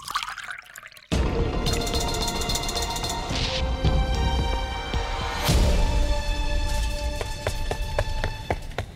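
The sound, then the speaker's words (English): Liquid pours steadily into a glass for about eight seconds after a brief quiet start, a fairly loud splashing stream with ringing tones, pausing briefly midway before continuing. “Charge my glass up, would you?”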